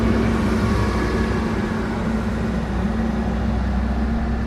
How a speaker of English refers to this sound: And here's another truck coming by. We'll just let it go by. Hold on a second.